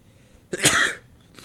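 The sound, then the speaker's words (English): A single loud sneeze bursts out with a sharp onset and a harsh, breathy spray lasting about half a second, followed by a faint breath. No one speaks. “Bless you, sir.”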